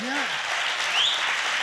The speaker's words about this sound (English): Come on, give the Lord a good clap.